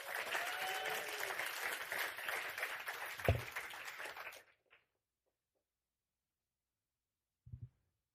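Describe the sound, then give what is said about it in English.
A crowd applauds as a person comes up to share a testimony, dense, steady clapping for about four seconds, then it cuts off abruptly into silence, broken only by a couple of faint thumps near the end. “Round of applause.”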